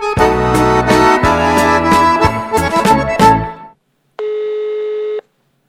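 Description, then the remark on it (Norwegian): A busy stretch of layered electronic tones and jingles, then a pause and a single steady ringback tone as the Fredagshjulet show phones culture consultant Line Egerhed, clear, with no one talking. “Vi ringer kulturkonsulent Line Egerhed.”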